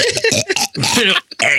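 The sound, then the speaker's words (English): A string of forced, croaking burps pushed out in several short guttural bursts, loud, with brief gaps between them. “It's like a 3-year-old having his first burp ever.”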